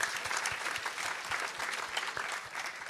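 A crowd applauds a drummer after his drum playing, steadily for about three seconds, a dense, even wash of many clapping hands with no voices standing out.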